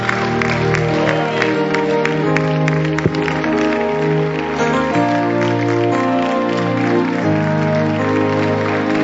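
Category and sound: crowd, audience clapping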